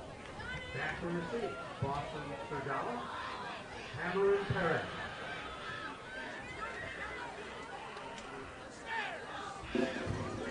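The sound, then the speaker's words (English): A stadium crowd of Trailblazers football fans chants and yells "start the bus" together with 10 minutes and 52 seconds to go in the game, a dense, steady roar of voices lasting the whole stretch, with louder bursts of shouting swelling up near the middle and end. “And with 10 minutes and 52 seconds to go, the Trailblazers, fans and all, are yelling, start the bus.”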